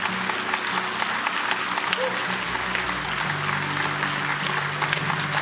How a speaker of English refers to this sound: But Jesus called people publicly, and this is a cheering crowd. You can make a stand for Jesus in a cheering crowd.